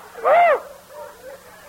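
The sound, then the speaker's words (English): A voice imitates a whistling woo: a single loud, hooting tone that swoops up and falls back down, followed by faint, softer vocal sounds. “It was coming out of my ears, whistling. Woo! Woo!”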